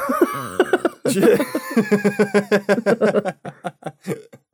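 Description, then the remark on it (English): A sudden, loud sneeze bursts out after some voiced sounds, followed by a long run of quick, rhythmic, breathy laughter that gradually fades into short, scattered bursts. “Oh, man. Bless you.”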